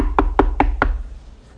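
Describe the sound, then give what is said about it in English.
Four evenly spaced knocks on a wooden door, firm, at a steady rhythm, followed by a brief quiet pause with faint room tone. “And you're knocking on doors.”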